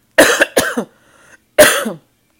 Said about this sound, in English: I am so sorry, but this past weekend, I don't know, I just have developed this cough that anytime I'm talking for a long period of time